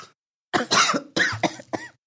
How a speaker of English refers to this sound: You need some space? You just give them a little cough. Look.